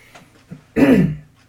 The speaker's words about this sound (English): Sorry about this coughing.